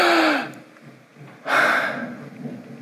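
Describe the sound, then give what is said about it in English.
A voice acts out a dramatic gasp for breath: a short breathy intake, a brief pause, then a louder, longer rasping gasp that trails off, without words. “But more incredibly is the boy who was once dead now gasps.”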